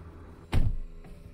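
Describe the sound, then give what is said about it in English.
A chauffeur opens the rear door of a Lincoln car with a single solid, low thunk, followed about half a second later by a fainter click. No one speaks. “The chauffeur got out and opened the rear door.”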